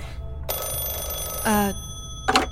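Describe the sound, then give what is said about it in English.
A landline telephone rings in a bright, buzzing burst lasting about a second, followed by a shorter second ring after a brief pause. “Is that how yours sounds when it rings?”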